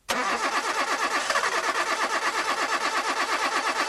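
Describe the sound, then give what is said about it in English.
A car engine turns over and fires up, settling into a loud, steady rhythmic chugging that continues for several seconds with no voices. “Seafoam helps engines start easier, run smoother, and last longer.”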